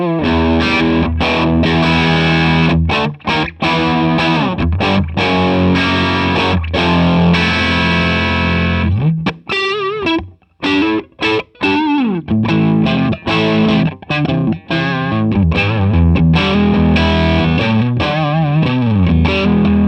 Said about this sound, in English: All right, now we're going to try a little rat distortion, which is a little nastier, a little bit more like a fuzz, I think, in taste. Yeah.